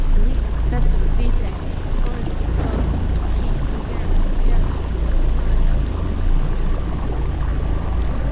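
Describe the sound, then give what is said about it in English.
Water in a pool on the National Mall churns and bubbles loudly and steadily at a hard boil, with a deep rumbling undertone and no breaks from start to finish. “As she does, the water in the pool begins to boil.”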